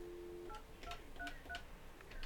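A quick series of telephone dialing tones as a caller calls back into a live call-in show: four or five short two-pitch beeps in an uneven rhythm, following a brief steady tone at the start, over a low background hiss.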